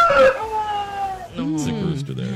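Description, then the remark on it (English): A person imitates a sick rooster's crow in a hoarse, strained voice: a drawn-out wavering call that breaks into rough, croaky warbles, loud, about two seconds long. “sick rooster.”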